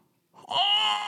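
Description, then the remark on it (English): A single shrill pig squeak that starts with a short rising yelp, then holds as a loud, piercing, nasal squeal for about half a second, with no talking over it. “Pig squeak.”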